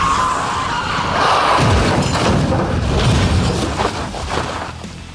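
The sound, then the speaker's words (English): A van skids and crashes violently onto its side after the driver loses control of the wheel: loud booming impacts, grinding metal and shattering glass pile up in a dense roar for several seconds before gradually subsiding. “She loses control of the wheel and can't steer into the skid.”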